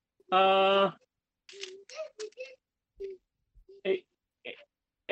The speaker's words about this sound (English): Stop humming that copyrighted song, please, okay?